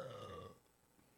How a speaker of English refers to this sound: I have to burp, and I can't burp like that.